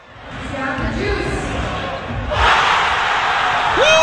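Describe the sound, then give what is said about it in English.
An Iowa Hawkeyes basketball arena crowd murmurs loudly near the end of a game, then bursts into a sustained roar of cheering about halfway through, reacting to the team's student manager taking a half-court shot during a timeout, staying loud to the end. “And it was the crowd reaction to manager Jack Devlin's shot.”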